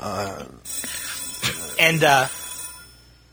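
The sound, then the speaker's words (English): A telephone rings in short bright bursts at moderate volume, with indistinct voice-like sounds around it and a faint steady hum underneath. “Here we go again with the classic phone.”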